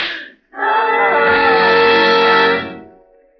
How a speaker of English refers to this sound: What was that? I heard a scream. It's downstairs.